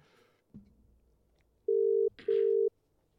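A telephone ringback tone of an outgoing phone call sounds twice, two steady mid-pitched buzzing pulses of about half a second each with a short gap between, loud and alone after a brief soft clatter.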